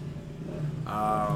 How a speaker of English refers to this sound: Yeah, sorry, y'all. We got a motorcycle brigade outside.